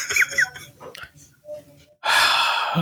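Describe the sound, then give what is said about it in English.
A voice imitates someone gasping for air as they die, likened to the coronavirus dance on Fortnite: a few strained, wheezy vocal sounds, then a loud, harsh, drawn-out rasping inhale. “It's you gasping for air as you die, yeah.”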